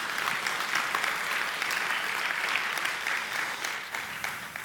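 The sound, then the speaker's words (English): An audience claps steadily, a dense, even wash of many hands sustained for several seconds before thinning slightly at the end. “You can clap for that.”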